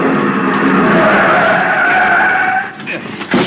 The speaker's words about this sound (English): The other driver had jammed on his brakes and finally skidded to a stop against the curb.